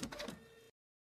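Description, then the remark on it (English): A printer runs with a few quick mechanical whirs and clicks that settle into a steady buzzing hum, then stops abruptly after under a second. It is faint, with no one talking. “You don't enjoy the printer going.”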